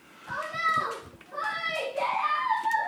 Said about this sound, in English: Who will inevitably be heard at some point in time if you can't hear them already. All right. We have child background noise, which is wonderful.